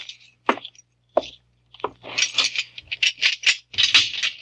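Keys rattle: a few separate metallic clinks at first, then a busy run of bright, jingling rattles that carries on for the last couple of seconds, with no voices.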